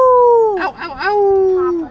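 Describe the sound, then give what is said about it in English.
A voice imitates a dog's howl, the 'ow ow ow' howl from Paw Patrol: one long, loud, sliding wail with a few wavering yips in the middle before it trails off downward. “You want to howl for us?”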